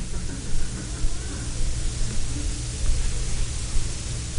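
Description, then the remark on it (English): Water pours steadily into an almost-full glass, filling it up, a continuous rushing splash that holds at an even loudness for several seconds with no voices over it. “I mean, if I take this glass, which is almost filled up, and I fill it up, I reach a point in which I can't get any more in it.”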